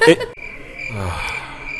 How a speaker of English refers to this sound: Is there any way to edit cricket noises into this podcast? Cue the crickets!